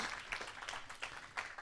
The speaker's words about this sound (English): Can I have a round of applause for my friend